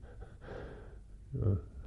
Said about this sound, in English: Breathing in. The different, you know, breathing in is letting go also in its own way.